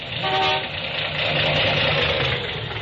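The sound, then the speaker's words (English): A car engine runs steadily with a rough, uneven, misfiring rumble, as if some spark plugs are not firing, and a short horn-like toot sounds near the start. No one speaks. “Engine, huh? Hasn't got the pickup of a kitty car. Well, it's misfiring some.”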